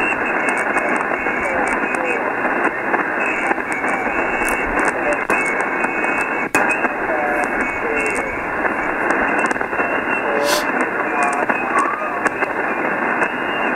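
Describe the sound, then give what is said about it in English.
Dense HF shortwave radio static roars steadily during an amateur radio contact attempt, punctuated by sharp crackling static crashes and pops throughout, with a faint, garbled voice buried under the noise. “The static crashes are just killing us, man.”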